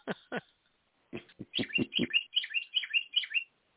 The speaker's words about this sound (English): Are you still with us, Pan Am? I think your bird is talking to you.